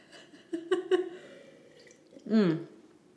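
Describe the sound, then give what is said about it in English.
Wet sipping sounds: a few quick slurpy clicks of someone drinking wine, then a louder throaty swallow with a brief voiced hum near the end. “So, first sip. Cheers.”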